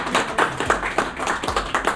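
An audience applauds with a run of sharp, crisp claps at a brisk, fairly steady rhythm, moderately loud throughout, with no voices over it.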